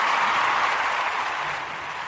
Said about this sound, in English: So I'll put this round of applause in because I can hear it.